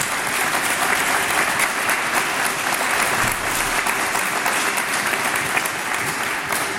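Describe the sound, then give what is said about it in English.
An audience claps steadily throughout for a guest's honest answers to questions, a dense, even wash of many hands with no voices standing out and little change in loudness. “I think maybe a round of applause for that honesty there.”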